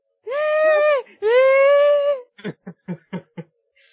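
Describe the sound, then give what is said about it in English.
A person imitates a squealing pig, loud: two long, drawn-out nasal squeals, then a quick run of five short, choppy squeaks. “I'm going to squeal like a pig. Squee, squee.”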